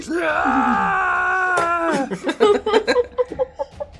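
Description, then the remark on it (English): A voice lets out a long, sustained anguished scream, holding a high wailing pitch for about two seconds, then breaks into choppy, laughing vocal bursts. The scream sounds acted out rather than genuine. “He screams in anguish.”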